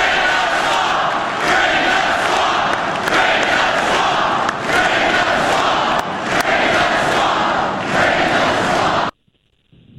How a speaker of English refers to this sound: Wow, only when Obama had crowds fired up have I ever in my lifetime heard crowds like that. Maybe Bernie sometimes on particular points, but man, Trump still got him just going crazy at those rallies.